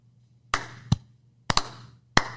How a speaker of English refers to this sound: Clap. Slow clap. Because that's fantastic.